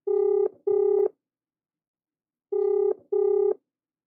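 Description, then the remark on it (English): Telephone line tones of a call placed to Australia sound in two pairs of short, steady electronic beeps, with a long silent gap between the pairs. They are clear and moderately loud, and no voices are heard. “He's now living in Australia, where I reached him by phone.”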